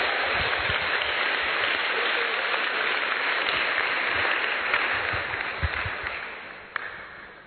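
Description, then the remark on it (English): A church audience at a morning service claps their hands for the Lord together in a dense, steady wash of applause that holds loud for several seconds, then thins and tapers off, with one sharp clap standing out near the end. “I think it's a good place for you to clap your hands for the Lord.”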